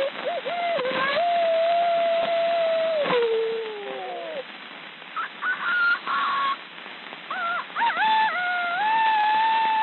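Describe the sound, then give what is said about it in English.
Human voices imitate barnyard animals on a thin, narrow-sounding old gramophone disc from the end of the 19th century: a long, wavering crow-like call that slides downward, then a string of shorter, rising yelps and clucking cries. “Very early on, the end of the 19th century, He puts out a disc of people imitating barnyard sounds.”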